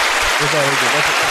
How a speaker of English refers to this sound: That's a clap. You applaud his antics.